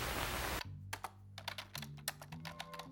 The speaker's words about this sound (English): I'm sure just typing away at nothing will be just as good.